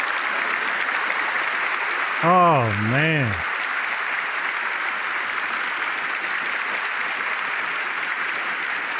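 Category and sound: crowd, long audience applause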